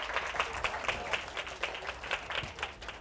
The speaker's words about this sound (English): So give yourselves a massive clap for your story. Well done. Really good.